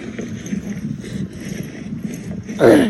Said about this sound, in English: Hey guys, so we're out here walking the puppies.